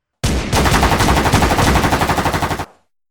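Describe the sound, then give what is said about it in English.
A loud, sustained burst of rapid automatic gunfire, dense rattling shots fired in quick succession for about two seconds before cutting off abruptly, with no voices. “Rifles, automatic weapons, and shotguns all ripped apart the tree trunks.”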